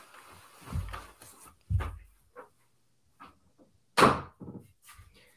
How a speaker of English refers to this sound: I'm gonna shut the door. Hold on.